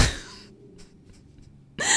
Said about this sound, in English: My dog, like, I don't know if I should leave this in, but that giant noise was my dog taking a ferocious leap to try to chase a mouse that ran across my kitchen, because we were currently at war with Stuart Little.